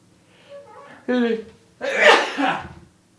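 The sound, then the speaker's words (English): A single loud sneeze: a short voiced, gasping intake of breath builds up first, then a forceful, noisy burst that trails off quickly into quiet. “I gotta sneeze.”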